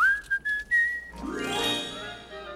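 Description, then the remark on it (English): A person whistles a short, clear tune of several sustained notes for about a second, then a fuller, richer burst of music swells in and takes over. “When you feel that no one is near, whistle, and you'll find me standing right here.”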